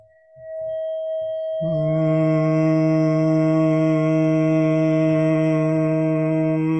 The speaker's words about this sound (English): But so as an example, right, I'm going to play 639 hertz, and so if I wanted to tune myself or kind of hum to it, I would just listen to it, and then I would start to make that sound, right? So hopefully you can hear it.